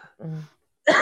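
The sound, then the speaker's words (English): A low, rumbling throat clear followed by a short pause and then a sharp, loud cough burst from a person still recovering from a cold, with no talking. “Excuse my coughing.”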